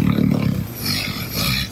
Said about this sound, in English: Yep, Hank snores like a foghorn.